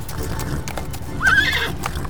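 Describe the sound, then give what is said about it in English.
Horse hooves clop steadily on the ground while a horse lets out a short, rising whinny midway through, fairly loud over a low rumbling background, as a man moves the horse over to a hitching post by a saloon and it resists being pushed forward. “He moves his horse over to the hitching post. It wrestles with Christian as he pushes it forward towards the saloon.”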